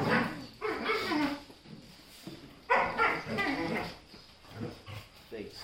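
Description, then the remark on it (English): Dogs bark and yelp repeatedly in irregular bursts, loud, with some whimpering yips between, while a person speaks over the noise during a Bible teaching given in English and Swahili. “can you get one of the boys to take these dogs inside? They're being a huge distraction.”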